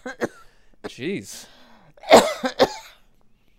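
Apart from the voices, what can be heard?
coughing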